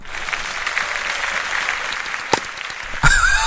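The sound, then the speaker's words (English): A sound effect of polite Wimbledon tennis crowd applause: steady, restrained clapping with a light, even patter that holds at a moderate level, then a brief swell and a few whistles or cheers near the end. “Have you got your two-finger clap for Wimbledon? I like your sound effects there, Sam.”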